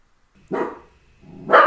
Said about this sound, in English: Sorry, my dog's barking at something. The dog agrees. Hey, come on. Sorry about that.